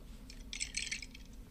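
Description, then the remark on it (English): Bright, high-pitched clinking and rattling of ice cubes knocking against drinking glasses, in a quick cluster of taps that swells in the middle and then trails off into a few lighter ticks. “I don't know if you've ever tried to clink glass around with ice.”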